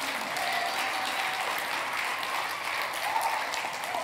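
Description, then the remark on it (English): An audience claps steadily, a dense wash of many hands with no clear rhythm, holding at an even, fairly loud level throughout with a faint murmur of voices underneath. “Clap like you mean it.”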